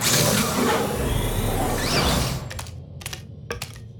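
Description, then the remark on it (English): A loud whooshing, mechanical rush gives way to a few sharp, clacking footsteps, evenly spaced about half a second apart, in a metallic room with no doors or windows as two pink aliens walk in, with no talking. “Hang on, I can hear footsteps. Something is coming.”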